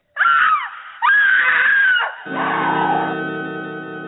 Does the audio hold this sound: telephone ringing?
no